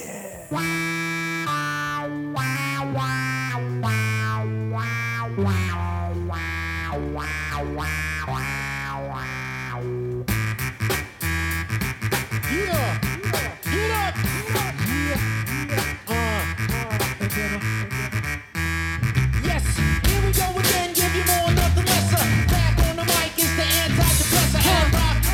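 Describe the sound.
A hip-hop song plays, opening with sustained, shifting synth tones before a dense, punchy beat kicks in around ten seconds, loud and steady, growing fuller toward the end with a brief voice shout.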